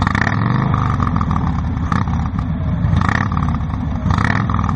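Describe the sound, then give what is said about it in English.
A motorcycle engine revs loudly, a deep continuous rumble with rough, throaty surges swelling about every second, no talking over it. “He came burning around the corner on his hog with his lady clinging to his back.”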